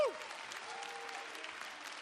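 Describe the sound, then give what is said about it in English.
Sustained applause from an audience welcoming a man coming up to share, dense overlapping claps forming a steady wash of sound for the whole stretch, fairly loud and continuous with no talking over it. “You got to keep clapping.”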